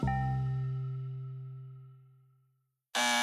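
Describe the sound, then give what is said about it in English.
A ringing, chime-like tone fades away into a short silence, then a loud, harsh apartment door buzzer, being pressed, cuts in abruptly and keeps droning to the end. No one speaks. “How many of us press a buzzer like this every day?”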